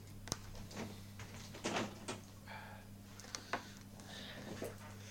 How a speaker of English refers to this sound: Just going to close the door, hang on.